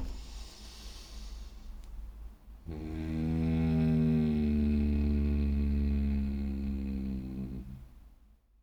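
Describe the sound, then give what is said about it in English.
As a breathing exercise, a breathy inhale through the nose, then a long, deep voiced exhale held for about five seconds, a growling human imitation of a lion's roar, fairly loud, with no talking. “So, let's make some lion noises.”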